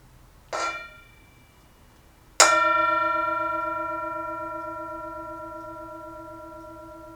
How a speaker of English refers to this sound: As always, we have the Tibetan Singing Bowl, and you are, as always, invited to enjoy the sound of the bell.